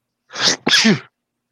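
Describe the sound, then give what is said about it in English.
A single loud sneeze: a breathy intake burst followed by a sharp explosive release with a brief voiced tail, then silence. “Bless you. Sorry about that.”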